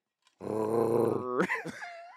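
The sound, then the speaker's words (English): A person imitates a dog, making a long, rough, growling vocal sound followed by a couple of short, pitch-swooping yelps, with no other speech. “You sound like my dog, Minnie.”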